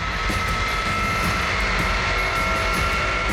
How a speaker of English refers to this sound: That's when they heard it. The distant but unmistakable sound of the C-5's whining engines.